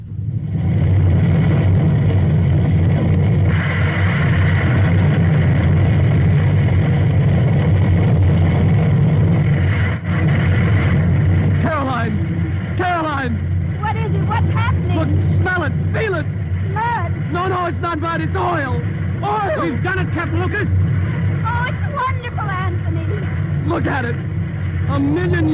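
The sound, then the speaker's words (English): An oil gusher erupting from the ground at the Spindletop well, driven by gas pressure: a loud, continuous roaring rush with a heavy low rumble throughout, joined about halfway by many overlapping excited voices shouting over it. “Blasting out of the earth.”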